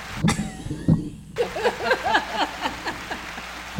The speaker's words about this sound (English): Oh, we got to do the clap.